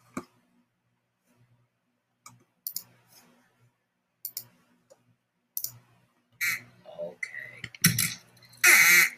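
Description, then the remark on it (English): Duck call blown in short, separate bursts: faint clicky squawks at first, then louder, raspy quacks coming in quicker succession toward the end, with no one talking. “Duck call after duck call undergoes Cuthbert's careful”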